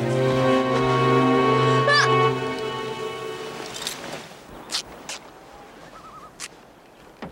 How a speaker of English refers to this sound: What is that you're ripping? It's fabric from the uniform of an army officer of Gilder.